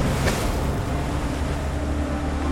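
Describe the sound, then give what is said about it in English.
A steady, broad roar of ocean surf on a beach fills the scene, continuous and fairly loud, with a brief brighter wash near the start and no voices. “Two shots ring out, muffled by the roar of the ocean and the openness of the beach.”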